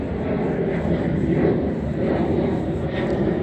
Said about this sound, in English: That's called turning up the volume of the sound of a plane. Like they're taking off over the Center Ice arena. And then they're perpetually taking off as they continue toward the museum.